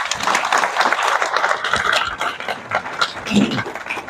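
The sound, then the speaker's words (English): An audience at an event claps steadily for a guest for about four seconds, a dense, continuous wash of many hands at fairly even loudness, with a few scattered calls or whoops mixed in. “So give this guy a round of applause.”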